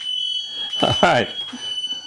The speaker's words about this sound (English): wait, is that truck backing up in your driveway?